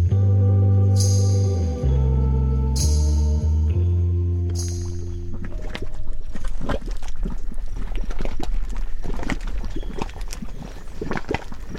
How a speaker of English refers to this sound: We leave you this week with some mud cauldron bubbles. In Yellowstone National Park's geothermally active landscape, volcanic mud pots put on quite a spectacle as they stew their soupy goop